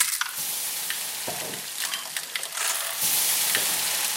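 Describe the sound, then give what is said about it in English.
Onions, ginger, garlic and tomatoes being fried sizzle steadily in a hot pan, a dense crackling hiss with a few stirring scrapes, growing slightly louder near the end. No one speaks. “So he's frying up some onions, some ginger garlic, some tomatoes.”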